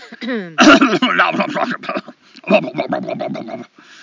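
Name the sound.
coughing and throat clearing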